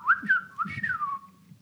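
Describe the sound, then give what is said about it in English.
A person whistles a tone that rises briefly, then glides steadily downward and fades, imitating a falling torpedo. Moderately loud, lasting under two seconds with no talking. “That was a decent whistle.”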